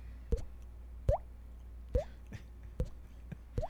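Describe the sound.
Five hollow, water-drop-like plops, each with a quick upward-bending pitch, made by flicking a cheek. They're evenly spaced about a second apart, fairly loud, with no talking.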